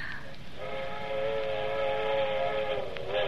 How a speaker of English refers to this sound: That's what I like best, them train whistles. To remind you of other places. You hear them all night. Don't you love the sound of it? Scary, kind of. Nah. Gangway, get out of my way. Here I come. That's what it says.